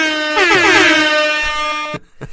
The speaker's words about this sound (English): Every time our advice is specifically dump them, we're going to put some air horns on that. I'm going to definitely make sure to edit that in right here.